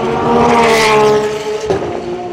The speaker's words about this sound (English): Yeah. That because those cars are so loud, that it doesn't sound kind of crazy fast like it did when you did your test. Yeah, they were just kind of sounded like whooshes when I did it. Yeah. But yeah, those suckers sound great.